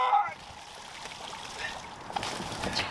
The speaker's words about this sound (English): And we got all this mullet splashing. All the mullet we need in one cast and two giant jacks.